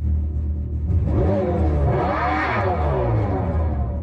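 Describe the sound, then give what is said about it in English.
A concept electric car's synthetic exhaust revs up loudly, its droning engine-like tone climbing and falling over a steady low rumble, with no talking. “The other thing that stands out is the exhaust. You heard me right. This EV does go burr.”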